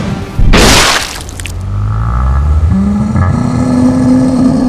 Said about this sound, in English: And Jezeline fires a cannon directly into Gift eyeball?